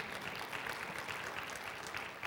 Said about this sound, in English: Well, the applause suggests you really do agree.